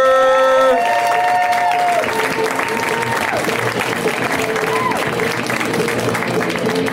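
A large audience breaks into loud, sustained applause for comedian Alex Hooper, with cheering and whoops and dense clapping, while a brief musical sting plays at the start.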